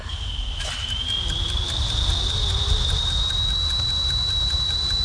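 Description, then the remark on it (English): A voice imitates a jet plane taking off: a steady high whistling whine that slowly climbs in pitch, held over a rough, rumbling roar for several seconds. “How about a plane taking off? Yeah. Okay, this is a jet.”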